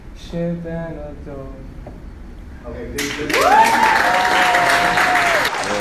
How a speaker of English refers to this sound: A massive round of applause from the class.